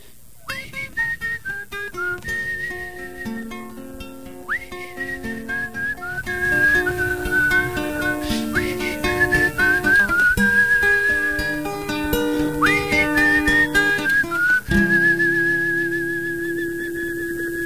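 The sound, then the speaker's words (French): A concert audience whistles a melody along with a live song, riding high over a full, steady band accompaniment and carrying the tune continuously from start to finish. “Hey, vous êtes sûrement capable de siffler, vous autres aussi.”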